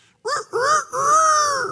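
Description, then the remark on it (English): A person imitates a rooster's crow in three loud, strained voiced bursts, two short rising calls followed by a long, drawn-out wavering note, with no other sounds. “It's a pretty good rooster, and the reason is because I lived in Hawaii for a little while and we learned how to do roosters.”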